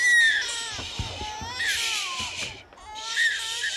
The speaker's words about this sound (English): The creature starts to wail.